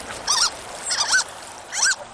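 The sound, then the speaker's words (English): Harlequin duck (Histrionicus histrionicus) calls: three high, squeaky, rising-and-falling notes spaced evenly about three-quarters of a second apart, clear against a quiet background with no talking. “To see some photos of the harlequin, Histrionicus histrionicus, go to our website”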